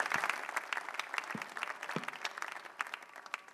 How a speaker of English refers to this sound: Please welcome him with a clap.